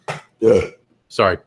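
Three loud burps in quick succession, each a short, throaty, voiced croak with brief pauses between them and no talking.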